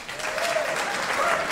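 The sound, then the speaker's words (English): An audience breaks into steady, dense applause: many hands clapping at once, filling the whole moment at an even, fairly loud level, with a faint tonal whoop or whistle mixed in. “And by round of applause, who has never heard the podcast before?”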